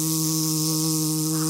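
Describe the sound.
A voice imitates an insect's buzz, holding one steady, droning hum for a second and a half with no words spoken, moderately loud.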